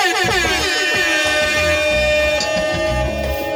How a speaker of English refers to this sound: Air horns.